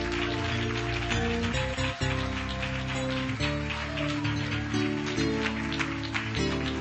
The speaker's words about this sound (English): One last time before you're seated, clap your hands and praise to the Lord.